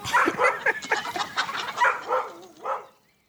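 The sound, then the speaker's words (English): A dog barks excitedly in a rapid, jumbled run of yaps while running around on the ground, mixed with squawking, clucking chickens jumping and flapping their wings, all loud before trailing off into quiet. “Joy starts barking and running around the ground”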